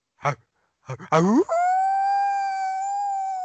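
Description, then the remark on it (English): A voice imitates a wolf howl: a few short vocal yelps, then a rising glide into a long, steady, high-pitched howl held for about two seconds. “I know your cousin's a wolf and all, but he just hung up on you.”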